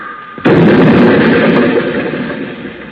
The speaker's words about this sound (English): We're going faster! We're going up on the sidewalk! Hang on. I'm going to crash.